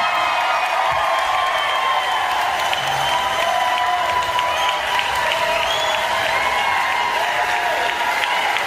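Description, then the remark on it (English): A large crowd cheers and applauds loudly and without a break, steady dense clapping carrying high whistles and scattered whoops for the full stretch, after Taylor Greene announces she has filed articles of impeachment on Joe Biden. “And the crowd goes wild.”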